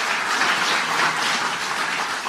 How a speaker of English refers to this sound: Okay. Round of applause.